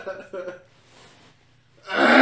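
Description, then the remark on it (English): A short vocal sound and a breathy pause lead into a single loud, explosive sneeze that bursts out at the end and is cut off abruptly. “Bless you, goddamn.”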